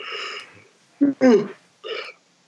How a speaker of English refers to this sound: I just yawned while recording a podcast. Excuse you. Sorry.